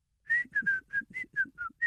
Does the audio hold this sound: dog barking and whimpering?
no